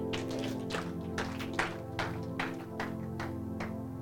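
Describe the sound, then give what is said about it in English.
An audience claps together for the Lord Jesus in a steady rhythm, sharp bursts landing about twice a second over a sustained, droning musical backing. No one speaks. “Clap for the Lord Jesus.”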